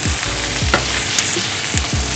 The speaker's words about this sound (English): So I'm just basically turning the chicken now.